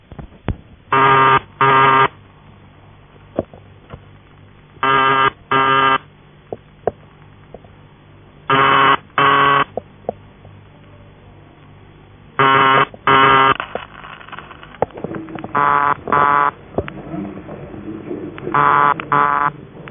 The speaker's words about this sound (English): When you're using vibrator ringing tones, on most exchanges, a buzzer relay tuned to around 133 Hz is used, and here are three examples. Post Office UAX-12, a manual exchange, and another PAX.